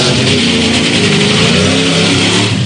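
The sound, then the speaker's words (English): A car engine revs loudly and steadily, its harmonic drone rising and sustaining over a broad roar for a few seconds with no voices. “Start your engines.”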